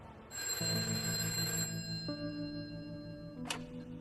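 A telephone rings with a steady, bright electronic trill that holds for several seconds, fairly loud, ending with a short sharp click, as a man in prison phones his wife. No one speaks.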